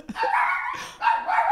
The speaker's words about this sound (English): Whoa! You got a big reaction from the dog on that one. Go off, puppy.